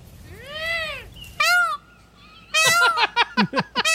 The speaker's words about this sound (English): That's what is immature, what is that? Peacock, dude? There he was.